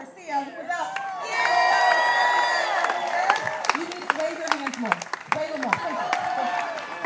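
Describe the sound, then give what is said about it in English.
A large crowd at a SAG-AFTRA labor rally in Texas, with many young people, cheers and whoops steadily over scattered bursts of clapping, with high excited voices rising above a loud, continuous roar that lasts throughout. “Crowd's very big, very happy.”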